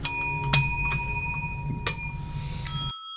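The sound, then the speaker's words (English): A hand bell is rung for a bell check, ringing out five times in quick, uneven succession, each bright ding ringing on and overlapping the next, over a low background rumble with no talking. “All right, everyone, do a bell check.”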